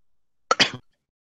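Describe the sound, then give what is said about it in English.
A single short cough burst, two quick harsh pulses lasting about a third of a second, standing alone against near silence. “Because I was coughing.”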